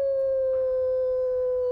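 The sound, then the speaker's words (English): A single wolf howls in one long, steady, sustained note that holds its pitch without breaking, loud and clear against a quiet background with no one speaking. “It is the wolf.”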